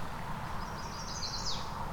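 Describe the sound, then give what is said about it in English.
A single high, rising song phrase of a mourning warbler rings out, brief and bright, over a steady hiss of outdoor background noise at the Currie Tract in Halton region, with no one talking. “So I'm hearing a mourning warbler just arrived at a particular part of, I believe it's the Currie Tract, Halton region.”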